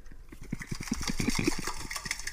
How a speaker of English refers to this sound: It's actually a guy. He has blown up, or he's filled a balloon with water, and it's in his sink, and he's just patting it all around with his hands.